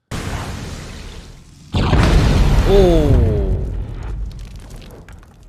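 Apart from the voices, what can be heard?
explosion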